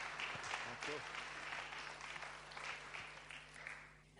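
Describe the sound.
A church audience applauds to welcome a guest preacher to the pulpit, with dense, steady clapping from many hands at a moderate level, thinning slightly toward the end, with faint voices mixed in underneath.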